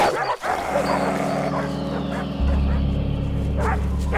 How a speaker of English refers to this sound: Dogs to the left of us. Dogs to the right of us. A little milk bone among the bunch of us.